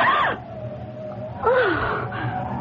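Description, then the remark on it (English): A woman gasps sharply from a darkened doorway on a deserted street very late at night in early summer, a high-voiced catch of breath, then gasps again a moment later, fairly loud over a low steady hum. “As he passes a darkened doorway, he hears a gasp.”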